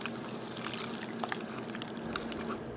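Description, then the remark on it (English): A steady trickle of a cocktail poured through a tea strainer into a glass to catch tiny ice shards, with a few faint ticks and splashes along the way and no talking. “And then I'm also going to use a tea strainer. This is going to remove those little tiny ice shards, things that will melt very fast, and increase the amount of water in the drink shortly after we serve it.”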